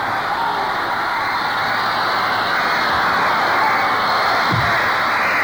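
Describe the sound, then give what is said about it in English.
A large crowd cheers in a continuous, loud roar that holds steady for the whole stretch, a dense wash of voices with no single voice standing out, greeting a touring band on its arrival. “All I can do is stand and acknowledge the tumult of the crowd.”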